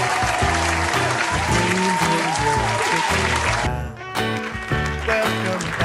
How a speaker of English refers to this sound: Some more applause.